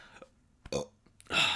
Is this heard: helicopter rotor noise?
no